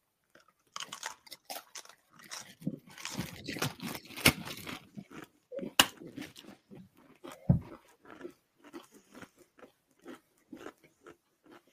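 Loud, crisp crunching and chewing of spicy Paqui tortilla chips (2021), with irregular bursts of sharp crackles over about twelve seconds and a few wet mouth sounds between bites, no talking.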